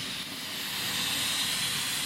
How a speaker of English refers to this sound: It's going to be two traction engines, the Dixie Flyer and a blue one.